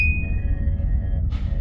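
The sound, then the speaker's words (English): A starship alarm, signalling that the ship is being attacked, sounds as a single high, sonar-like electronic tone that rings and slowly fades over a deep, steady engine rumble, followed by a brief hissing burst near the end. “What's that alarm?”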